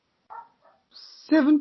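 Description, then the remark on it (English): Dogs, including one named Murphy, bark and yip in short bursts in the background, with a thin high whine partway through, then a louder, drawn-out bark closes the brief sequence. No one speaks over it. “Even my dogs are proving in the background.”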